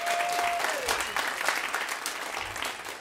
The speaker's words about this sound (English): You can give them a round of applause as well.